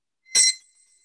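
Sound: bell ringing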